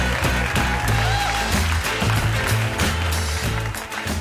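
Steady audience applause, a dense wash of clapping that holds at an even level for about four seconds, mixed with a backing of low, sustained musical tones.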